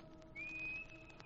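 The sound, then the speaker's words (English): A person whistles one steady, sustained high note for about a second as a signal, fairly clear against a quiet background, with no talking. “When I come back, I'll stand in the dock and whistle. Like this.”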